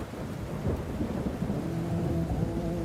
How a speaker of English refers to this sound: Rain pelted down on the top of my shitty silver hatchback, the darkness around my headlights darker than ink. Thousands of brightly lit specks flashed in the beams before fizzling out of sight.